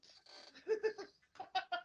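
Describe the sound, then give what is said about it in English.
A person's voice imitates a chicken clucking: a quick series of choppy, throaty bursts, fairly loud, with a brief pause midway before a final few clucks. “Well, you made a chicken, right?”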